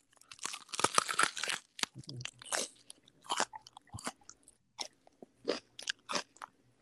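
Loud crunching of a crispy snack being eaten, a burst of rapid crackly bites followed by a steady series of separate crunchy chews with short pauses between them.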